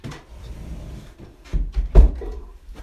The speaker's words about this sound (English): Like, sorry, my door's after opening there because of the wind. So I'm just going to close that.